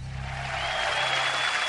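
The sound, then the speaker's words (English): A steady wash of clapping fills the short clip, dense and even from start to finish with no single claps standing out and no voices heard. “Hold your applause.”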